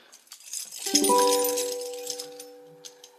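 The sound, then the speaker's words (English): A tambourine shakes with bright metallic jingles, then a few ringing tones sustain and slowly fade over the next couple of seconds. No one speaks. “Plays a tambourine.”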